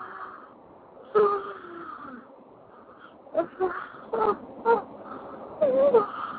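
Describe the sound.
A person yawns during a stretching exercise: a drawn-out, voiced yawn with a sliding pitch, followed by several shorter breathy, groaning vocal bursts, moderately loud against a quiet background.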